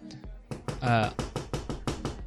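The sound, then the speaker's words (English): A rapid series of about eight sharp knocks on the door of a house during a Super Bowl party, evenly spaced, with a brief voiced sound mixed in near the start of the knocking. “What? Somebody's at the door.”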